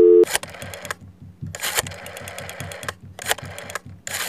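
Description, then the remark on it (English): A brief steady dial tone gives way to rapid mechanical clicking pulses, like a phone being dialed, with bursts of buzzy ringing sound repeating several times, fairly loud. “Alright, it's ringing. Hope she answers.”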